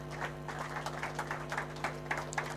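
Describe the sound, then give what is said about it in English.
During a sermon, a crowd claps for Jesus in a brief, irregular patter of overlapping hand claps, fairly soft, over a steady low electrical hum with no one speaking. “Give a clap of friends to Jesus.”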